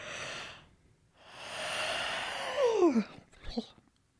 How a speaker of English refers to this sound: Hold on, I got a really big yawn.